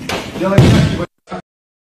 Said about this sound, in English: Yeah, that thud that you heard at the end was a 17-year-old's body being slammed onto the mat after Steven Seagal struck him in the throat at full speed.